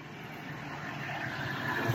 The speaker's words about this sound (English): oh, there's a huge ass truck coming this way.